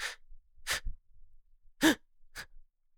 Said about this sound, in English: Were you holding in a sneeze? Kind of. I figured out a while ago that if I suck the roof of my mouth right before I sneeze, I then don't have to sneeze.